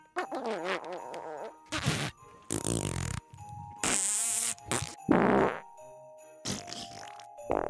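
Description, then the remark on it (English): A rapid series of loud, sputtering fart noises blown with the mouth, each burst buzzy and wet, some short and some drawn out, with brief pauses between them and no talking. “Do you need to make some fart noises to cheer yourself up before we start today's Christmas preparations?”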